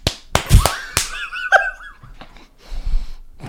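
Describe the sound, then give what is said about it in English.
A handful of sharp, dull fist claps land in a quick irregular burst, then one more after a pause, mixed with breathy gasps and a short rising vocal sound. “Has created many different unique styles of claps? Yes, I have. And I am very proud of them. Can I see one? Read them out loud. Fist clap.”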